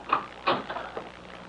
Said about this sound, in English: Oh, your bedroom door is closing. That's all I see. It's probably a draft catcher.